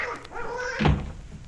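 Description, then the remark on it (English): A duck quacks in a run of harsh, nasal honks, then a dull thump lands as it attacks, with scuffling afterward. “Ouch, that duck must be a watchdog.”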